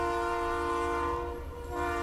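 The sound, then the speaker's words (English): A train horn blares one long, steady chord for the whole two seconds as the train arrives at a stop, loud and unbroken, dipping slightly before swelling again, with a low rumble of the train underneath and no talking. “All you passengers, we're about to stop at Knock Knock.”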